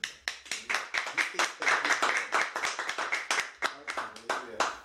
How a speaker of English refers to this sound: Give the Lord another clap.